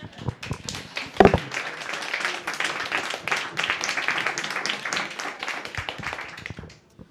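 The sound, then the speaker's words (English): A group of people applauding for several seconds: dense, steady clapping with many overlapping hand claps, a sharp burst near the start, then fading out at the end. “Maybe we need to give applause to all of us.”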